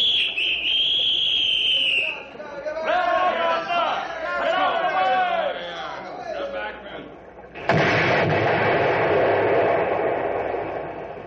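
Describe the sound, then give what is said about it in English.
A high steady warning whistle, then excited shouting voices, before a sudden loud dynamite blast bursts out and rumbles on for several seconds as the top logs are blown off a log pile. “All we did was blow a few of them top logs off the pile.”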